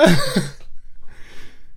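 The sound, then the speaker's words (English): A single loud throat clearing by someone with something stuck in their throat, a short gravelly rasp that stops abruptly, followed by a faint breathy rustle and then quiet. “Clear your throat.”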